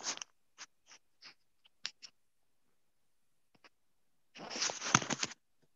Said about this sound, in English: Like, I've been typing in this chat this whole time, and I guarantee.